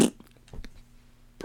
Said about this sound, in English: Pesticide. Spraying with little. Just a little. Yeah, fart on them.